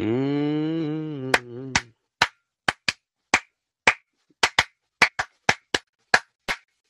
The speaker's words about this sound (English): Church clap.